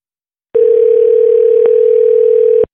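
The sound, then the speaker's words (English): A telephone ringing tone of a call to a Short Creek production assistant sounds once, a steady mid-pitched electronic buzz lasting about two seconds before cutting off, with no one speaking over it. “So let's give her a ring.”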